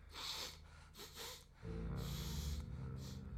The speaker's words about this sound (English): I can smell you in there, girl. Where are you at, little radio girl? I'll sniff you out.